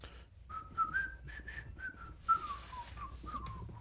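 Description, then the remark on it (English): A person whistles a wavering, tuneful melody in a hallway, with steady rising and falling notes, fairly clear, over a faint low rumble and soft background noise. “you hear like some footsteps echoing down the hall and some whistling.”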